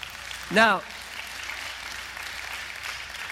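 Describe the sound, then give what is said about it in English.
An audience claps during a sermon, after a line about hell, in a steady, even patter for a few seconds, with a brief, sliding vocal cry rising above the applause near the start. “Now, I didn't expect a clap for that because that's really sobering stuff.”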